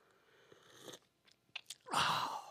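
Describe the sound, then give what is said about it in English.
Mouth sounds of someone sipping a drink: a few soft wet slurps and lip smacks, then a louder breathy swallow or exhale at the end. No talking. “Let me take a sip of Margaret, I need more than I need a real drink is what I need.”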